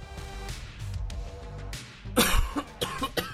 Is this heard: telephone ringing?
no